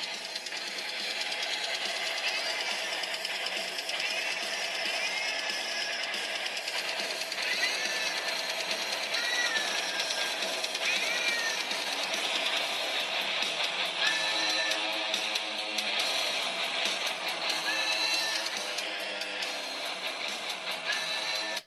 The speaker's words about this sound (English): You better believe it, I'm highly caffeinated listening to cat metal. Okay, let me turn up the volume. Pump up the volume. Come on, cat metal.